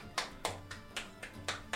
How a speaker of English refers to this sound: And the show has ended, and everyone is on stage bowing, and the audience begins to clap.